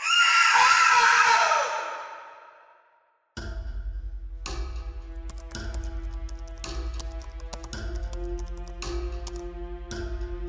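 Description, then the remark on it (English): A woman lets out a loud, drawn-out scream that fades away over about two seconds. After a brief silence, soft rhythmic chiming tones with steady ticks begin. “I figured out that if you stand just right while looking out the window, you could see a soft shimmer when she screamed.”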